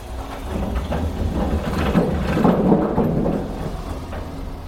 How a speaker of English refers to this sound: That was a car going over a bridge. Well, it wasn't a pike. You were beside a little... swing bridge. Swing bridge that you can manually swing. Yeah. So that the farmer can get across the canal.